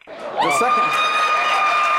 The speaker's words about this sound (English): Sorry, that was the Rubio shrieker just shrieking in there. Oh, yeah. Did you notice her throughout the whole debate?